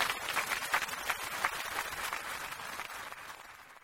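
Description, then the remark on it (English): An audience at the UX Australia 2017 conference applauds a presenter after her presentation, a dense, steady wash of many hands clapping at once that holds for several seconds and gradually tapers off toward the end, with no one speaking. “Give her some applause because she did a great job.”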